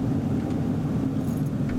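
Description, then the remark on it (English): Steady low rumble of a car driving on a road to Weevil Falls, heard from inside the car four hours into the trip, a continuous engine and tire drone with no talking. “In the car, 4 hours into the car trip.”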